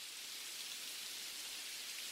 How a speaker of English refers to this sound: Rain still fell incessantly, as it always seemed to do, but it was bright out.